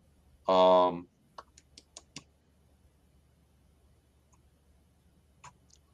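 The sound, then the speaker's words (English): A short, sharp burst of clicks and key taps from a computer mouse and keyboard while clicking through comments, fairly quiet, follows a brief tonal blip. A few more isolated clicks come near the end. “Let me start kind of clicking through these here because we need to wrap it up shortly.”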